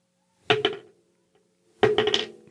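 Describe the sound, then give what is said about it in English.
A coin is flipped during a game and lands heads on a hard surface, making two short bursts of quick metallic clinks and rattles about a second apart, crisp with no one talking. “Flip a coin on heads, you gain on us, and you gain on us and gain 2 coins.”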